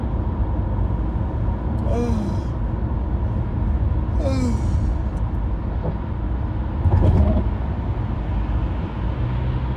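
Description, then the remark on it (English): Steady roar of busy road traffic, cars and buses rumbling past, with a couple of rising whines from passing engines and a louder vehicle surging by near the end. “The traffic is getting crazy.”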